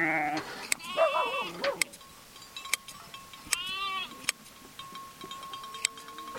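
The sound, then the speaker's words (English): A ewe bleats loudly, a long wavering call followed by a shorter one a few seconds later, as it lies on the earth outside a corral with its legs tied while its long wool is sheared by hand with scissors; sharp metallic clicks and snips are scattered throughout. “He ties the ewe's legs together and slowly scissors its long, lustrous wool.”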